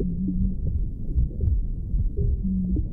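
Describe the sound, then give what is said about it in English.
A mother's heartbeat as heard by a baby from inside the womb, with steady low thumping pulses wrapped in a continuous whooshing, watery rumble. No voices. “Rhythm is there right at the start of our hearing because we're going to hear the heartbeat of our mother very strongly.”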